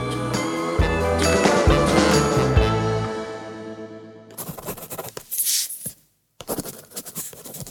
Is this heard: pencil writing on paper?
yes